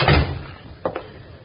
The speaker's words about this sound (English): Come on in. Close the door behind you if it ain't too much trouble.